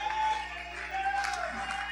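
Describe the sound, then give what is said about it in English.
An audience at a church service clapping hands and stomping feet in a steady, dense wash of noise, with voices murmuring and a sustained musical tone held underneath, fairly even in loudness throughout. “Clap your hands. Stomp your feet.”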